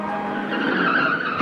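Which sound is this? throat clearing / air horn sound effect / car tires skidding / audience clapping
car tires skidding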